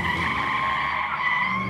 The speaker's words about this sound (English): I was interrupted by the sound of tires squealing behind me.